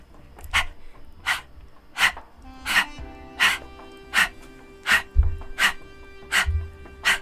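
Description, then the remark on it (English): A person doing a breath-of-fire breathing exercise pants rhythmically like a dog, about ten sharp, breathy puffs at a steady quick pace, fairly loud, with a faint low hum underneath. “Should we do a little breath of fire as well? Panting dog.”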